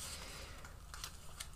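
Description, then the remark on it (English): Soft papery flicks and slides of tarot cards being shuffled, a few crisp snaps scattered irregularly over a low steady hum, quiet overall with no voices. “I'm trying to shuffle, and it's kind of difficult.”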